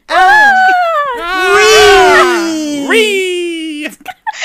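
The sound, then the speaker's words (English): Loud, sustained mock screaming from voices demonstrating how they screamed, a drawn-out wail that slowly slides downward in pitch for about four seconds before breaking off abruptly. “We screamed just like this.”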